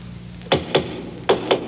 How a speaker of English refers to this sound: Oh, my goodness. Somebody's at the door, Leela.